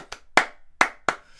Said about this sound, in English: And now you have to edit it in. As you're sitting and clapping.